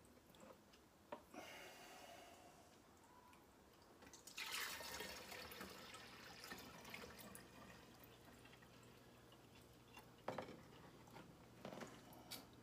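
Vinegary-smelling liquid is poured fast in a steady stream, splashing and spilling everywhere, with scattered drips and small clunks of a container; the pour swells louder midway and continues unevenly, with no one speaking.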